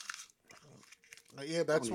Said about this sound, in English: He is actually eating the paper.